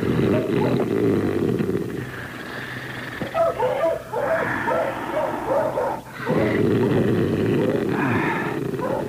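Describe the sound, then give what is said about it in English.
A sleeping dog makes low, muffled woofs and rumbling growl-like noises, fairly loud, running almost continuously with a brief dip midway and no talking. “you barking in your sleep?”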